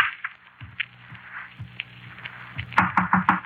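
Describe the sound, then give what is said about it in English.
A quick run of about five sharp, loud knocks on a door near the end, following a stretch of quiet room noise with a few soft thuds. “Didn't you knock at this door?”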